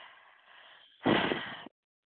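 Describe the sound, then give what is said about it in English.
Heavy breathing by a caller over a telephone line: a soft, drawn-out inhale, a brief pause, then a louder, rushing exhale lasting about half a second, muffled and thin like phone audio. “Hello, First of all, you are not going to be deep breathing me while I'm on this damn phone when you click the phone.”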